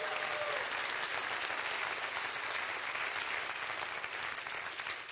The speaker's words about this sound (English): Clap your hands and rejoice in that right now.